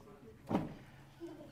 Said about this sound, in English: فَإِحْدَى بَنَاتِكُمْ أَغْلِقِي الْبَابَ بَرَكَ اللَّهُ فِيكِ One of you sisters there, shut the door, and may Allah bless you.